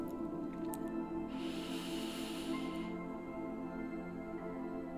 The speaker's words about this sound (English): I'm going to take a deep breath in for 7 seconds. I know sometimes you don't always hear me. I have allergies, but I am breathing in.